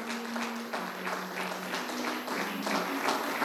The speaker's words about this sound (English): And now let's give yourself a hand clap. Come on for you.